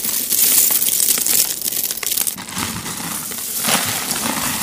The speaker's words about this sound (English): That is not the sound of ocean waves. It's hundreds of buttons being scooped up